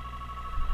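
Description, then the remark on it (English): A home landline phone sounds a steady, high electronic tone that holds unbroken for under a second at moderate volume, with no voices over it. “Oh, hang on, there's my home phone line.”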